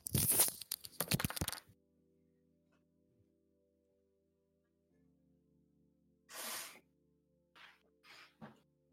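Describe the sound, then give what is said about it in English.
Someone blows their nose in a loud, rough burst of rushing air, then after a quiet pause gives another strong blow and a few short, sniffly follow-up puffs. “I'm gonna blow my nose.”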